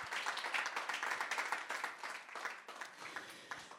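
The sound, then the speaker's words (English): An audience claps their hands for Jesus, a dense, steady crackle of many hands sustained throughout with slight swells and dips in loudness, and no voices over it. “I think you can clap your hands for Jesus at this point.”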